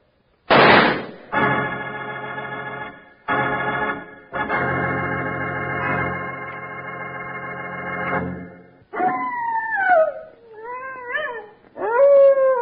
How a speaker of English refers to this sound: And Jiminy Slim, what's that? That's the howl of a prairie wolf, Charlie, and a hungry howl at that. If you're asleep and out on the range alone, it's an important sound to know.